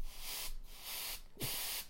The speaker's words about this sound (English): I just got this this electronic duster thing. It's pretty cool. It like dust off your computer and stuff, but it's like a spray. Look, watch this thing go.